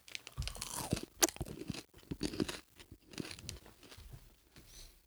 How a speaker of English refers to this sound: I'm eating something light. If you hear crumbling, ASMR. Little ASMR. Chew in the mic.